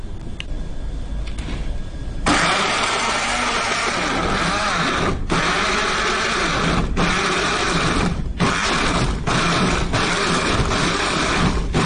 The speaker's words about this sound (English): This is creating a kind of sauce base, is it? Mm-hmm. And you want to save your time? It's going to help you save your time. So you have to blend it. Otherwise, you're going to spend more time frying them on your pan.